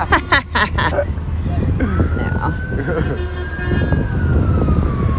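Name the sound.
ambulance siren passing outside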